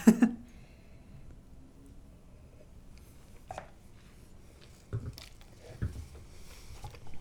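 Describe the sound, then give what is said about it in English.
A few quiet, wet mouth sounds of someone sipping Timotheus wine from a glass, spaced out over several seconds in an otherwise hushed setting with no talking. “Normally, I kind of ramble for a really long time, but it's in my glass and I can't help but want to sip it.”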